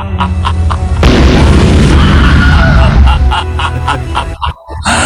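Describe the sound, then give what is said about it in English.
A loud explosion sound effect bursts in after a brief lead-in, a heavy booming blast with a deep rumble that lingers for a couple of seconds before trailing off. “I like that part. That I like perfect. The explosion.”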